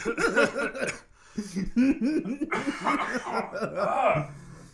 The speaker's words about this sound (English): You good, brother? Yeah, it was so funny. I cough.